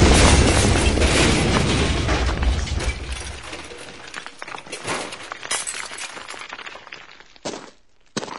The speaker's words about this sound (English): I caught a ride with this nice lady who just drove through the wall.